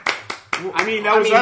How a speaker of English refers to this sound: Well, that was us cheering for the audience, but we have an audience.